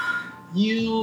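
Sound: telephone ringing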